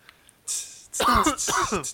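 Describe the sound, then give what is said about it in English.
A brief cough performed by a voice: a breathy burst followed by a voiced, throaty rasp, like someone imitating a cough or clearing their throat. “Took my clothes off and then just coughed like I did just”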